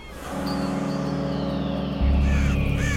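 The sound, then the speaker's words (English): Harsh cawing calls, like a flock of crows, cry out over a loud, steady low rumble that swells partway through, with the bird calls partly buried. “Send the birds away, Soleil.”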